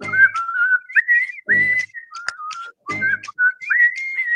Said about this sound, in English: Okay, are you whistling on top of you whistling? Jesus Christ, please no more whistling